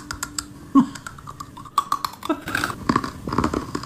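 Crisp crunching from someone chewing a hard, homemade cornflake holly cookie that was meant to be soft, with irregular brittle cracks and snaps in quick succession, growing denser toward the end.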